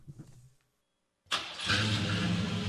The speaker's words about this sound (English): Dual exhaust on a Chevy. Ain't no Ford. I would never hear it. You'd never hear the Ford, you'd right? You'd never hear the Ford. That's it. And you hear the engine? Real engine.